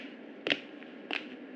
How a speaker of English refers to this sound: Walter, can you open up the transmission that's beeping? It's probably Orlando or Jennifer checking in before bed.